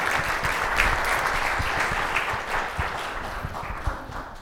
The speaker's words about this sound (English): So I like when there is applause at the beginning.